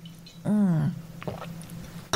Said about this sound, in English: You can listen to me drink mine.